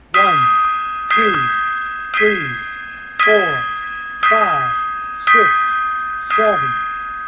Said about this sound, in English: All right. So, as promised, I'm going to give a 10-gong salute simultaneously to, like, Tawny Katane, …, …, the British Bulldogs. Here we go.